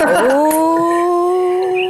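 A dog whimpers in one long, drawn-out whine that dips briefly and then holds a steady high pitch. It is loud, with no talking.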